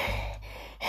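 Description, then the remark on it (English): A breathy airflow sound, a sharp inhale followed by an exhale, with a brief pause and another breath starting at the end; no talking. “7, that's breathing.”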